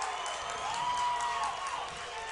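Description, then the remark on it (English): A football crowd boos at the end of a Fort Payne versus Scottsboro game, after Fort Payne wins 41-34 as time runs out on Scottsboro. The booing is a long, sustained wave of many voices, a steady droning groan that holds at a constant loudness over a wash of broad crowd noise, with no clear speech. “And the crowd's over there booing.”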